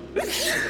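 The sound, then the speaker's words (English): A single loud sneeze, caused by ancient dust in a burial chamber, bursts out abruptly, a sharp explosive onset followed by a breathy, hissing trail that fades out within a second. No one speaks. “This dust is really getting to you, huh?”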